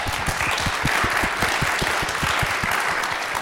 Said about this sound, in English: Keep that applause going as you thank our panelists